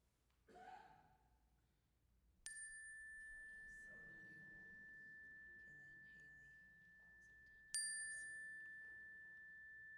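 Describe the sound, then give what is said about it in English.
A clear chime is struck twice, several seconds apart, each tone ringing out and lingering in a long, bright sustain, with soft, quiet murmuring voices beneath as people speak the names of loved ones aloud. “At the sound of the chime, I invite you to speak their names into the room.”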